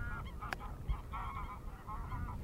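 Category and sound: bird, ducks calling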